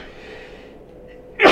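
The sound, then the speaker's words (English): A soft, breathy intake builds for a moment before a sudden loud sneeze bursts out, cut off right at the end. “Bless you. Three times.”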